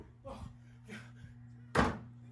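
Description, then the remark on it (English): A door bangs open suddenly without a knock, one loud thud after a couple of softer knocks and rattles, with a steady low electrical hum underneath. “What did I say about knocking, huh?”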